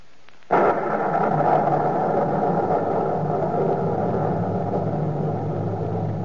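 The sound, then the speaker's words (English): A sudden, loud crack of thunder breaks in after a brief quiet, then rolls on as a heavy, continuous low rumble that stays strong to the end. No one speaks. “Soul in the thunder of the night.”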